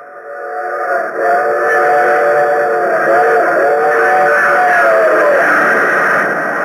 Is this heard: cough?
no